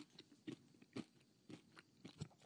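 Loud, close-up chewing of grilled cheese, with crunchy bites repeating about twice a second in a steady rhythm, and no talking.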